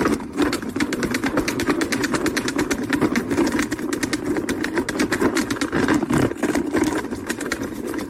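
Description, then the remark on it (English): A salad spinner, used as the game's machine called the dominatrix, whirs steadily for several seconds, its mechanical hum laced with rapid, even clicking that holds a constant level throughout, with no voices over it. “Isn't that a salad spinner?”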